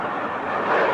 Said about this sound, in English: Any Allied personnel, here is my position. There is a fighter plane approaching. And when I say now, the jet will be directly over my head.